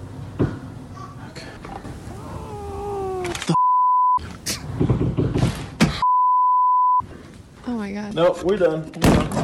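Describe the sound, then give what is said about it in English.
A few dull, muffled knocks thud out in an empty attic amid long electronic bleep tones, with yowling, cat-like cries and strained voices around them. “Those were knocks.”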